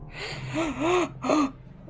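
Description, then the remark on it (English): A sharp, sudden gasp rings out loud, followed by a second quick intake of breath, with no talking around it. “And there was a sudden gasp.”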